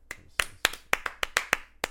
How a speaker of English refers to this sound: Clap for draft and ink.